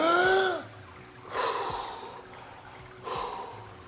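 A sharp voiced gasp, followed by two long, rushing breaths a second or so apart: a freediver's recovery breathing after surfacing from a dive, a small exhale first and then a deep inhale, with no talking.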